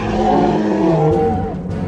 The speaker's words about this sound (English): The larger male took a step back with a slight bow, but then roared savagely and lunged at Benny.